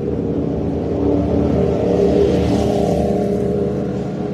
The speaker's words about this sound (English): Very loud motorcycles. A very fast car. Look how fast these people are going.